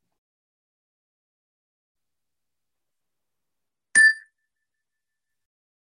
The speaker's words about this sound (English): We'll begin the meditation with the ring of the chime and end the meditation with the ring of the chime.